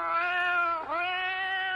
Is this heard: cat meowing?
yes